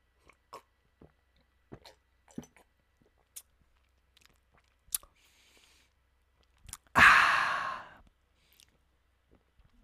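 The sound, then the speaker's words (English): Sipping of Hood eggnog: scattered wet mouth clicks and small gulps, then a loud, breathy satisfied exhale near the end. No talking. “But moving on to a sip of eggnog.”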